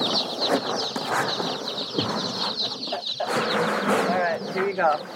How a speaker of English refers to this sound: All right, there they are, baby chicks.